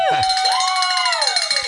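A handheld bell rings rapidly and continuously with a bright, sustained metallic tone, while a group of voices cheers and shouts over it.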